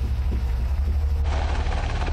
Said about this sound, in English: Nebraska National Guard helicopters are immediately deployed on rescue missions.